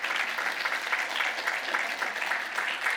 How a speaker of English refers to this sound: Come on, big hand clap for Metro West Caribbean Mission.